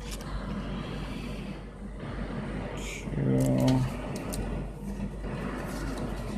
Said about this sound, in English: Quit revving your truck. Wow, that's a blue rail truck. Dang, he just driving through here like he owns the fucking place.